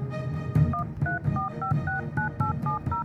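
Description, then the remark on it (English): A quick run of about nine touch-tone dialing beeps as someone dials a phone to call their Airbnb host, evenly spaced and fairly loud, over a low, steady background hum. “So then I pulled out my phone and I tried to call my Airbnb host.”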